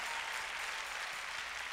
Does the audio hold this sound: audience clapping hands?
yes